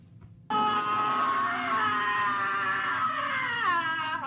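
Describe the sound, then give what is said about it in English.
A man in a movie screams as he wakes up from a dream: one long, loud scream that bursts in abruptly after a moment of quiet, holding a strained, harmonic tone for about four seconds before wavering and dropping in pitch at the end. “Because when he sees the naked corpse dancing, can we play number two, his scream when he wakes up from his dream?”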